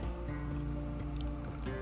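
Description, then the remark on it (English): Water pours steadily into a cup, a continuous trickling stream whose hollow tone shifts slightly as the cup fills, with no one speaking. “Add a little bit more water there.”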